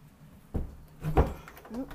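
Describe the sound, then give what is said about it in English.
A closet door that is hard to close in the humidity is shoved shut: a low thump, then a scraping, straining push ending in a heavier bump, with faint rubbing squeaks afterward. “This door is probably not going to close.”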